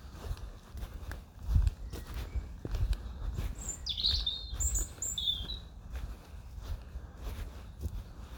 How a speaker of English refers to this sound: It's still that kind of, when the woods, that sort of dappled sun, it's like kind of a low sun still. Shadows in here. But at least the sun is shining and you can hear the birds.